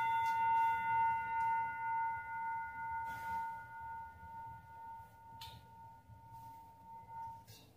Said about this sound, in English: Let me know if that air conditioner is a little bit loud.